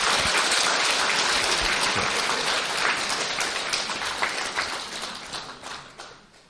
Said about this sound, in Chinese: 所以在这里我提议让我们以至诚感恩的心和热烈的掌声，对索达吉堪布表示衷心的感谢。